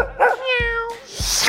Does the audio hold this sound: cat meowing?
yes